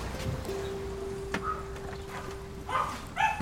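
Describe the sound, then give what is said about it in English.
A small dog lets out a few sharp, high yaps, clustered toward the end, over a steady low hum and faint background noise, at a house that visitors have walked up to. “An audacious dog.”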